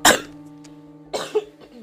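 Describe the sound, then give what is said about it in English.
Two dry coughs from a single person: a sharp, loud burst at the start, then a second softer cough about a second later, with a faint low hum underneath. “Excuse me, I'm a little bit down with cough, but I'm all right.”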